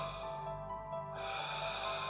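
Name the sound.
heavy breathing sound effect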